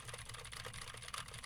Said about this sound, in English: Now I am speaking on the SM57 while typing on a keyboard with Gateron Blue switches to see how much of my voice versus how much of the keyboard it picks up.